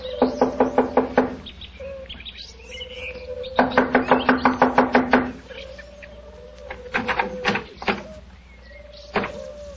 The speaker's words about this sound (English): Here we are. I'll knock on the door.